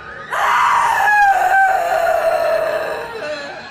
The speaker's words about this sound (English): A howling, hurt, heartbroken scream from Ricky's mother woke up the whole street.